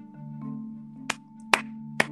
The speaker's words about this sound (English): Amen to that. I applaud you. Like, you're just... I can't stop clapping for you. I can't stop sending you virtual flowers.